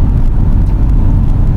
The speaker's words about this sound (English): Also, we are currently in a car that we own.